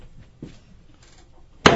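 A steel chair slams into something with a single loud, sharp crack near the end, following a stretch of quiet low rumbling and faint shuffling. No one speaks.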